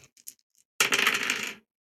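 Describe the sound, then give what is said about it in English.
Three dice clatter and rattle across a hard surface in a dense, bright burst lasting under a second, preceded by a few light clicks as they are picked up; the roll comes up 1, 3 and 5. Fairly loud, no voices. “I rolled a 1, 3, and 5 for my positive dice.”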